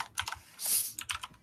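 Rapid clicking of keys as someone types on a computer keyboard, a quick irregular patter of sharp taps with a brief louder clatter in the middle, fairly quiet.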